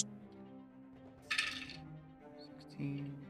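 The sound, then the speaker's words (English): A short burst of dice, rolled for a sneak attack in a tabletop game, clattering and tumbling across a hard tabletop, lasting about half a second, with quiet voices murmuring in the background. “How many dice am I rolling for this?”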